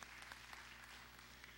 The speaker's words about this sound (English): That's a good place to give the Lord a hand clap of praise. If I'm looking for one, that's it. Yeah, that's it.